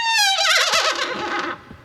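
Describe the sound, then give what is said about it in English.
A horse whinnies once, loud, a high quavering neigh that wobbles downward in pitch over about two seconds before trailing off. No one speaks over it. “Look at the horse.”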